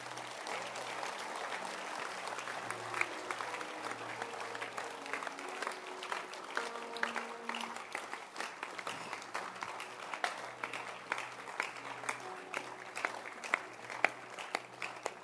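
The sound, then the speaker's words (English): A crowd applauds steadily to welcome people being seated at the front, many hands clapping in a dense, continuous patter that holds for about fifteen seconds, with a low steady hum underneath and no voices standing out. “Let's clap our hands and welcome them.”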